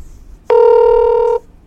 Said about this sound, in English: So we're going to call him and get him on the phone here.